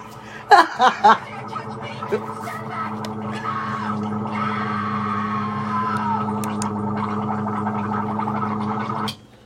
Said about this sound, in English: Someone tried to take my gargling water. Get away! Don't touch me.